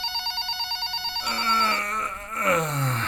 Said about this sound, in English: The phone continues to ring.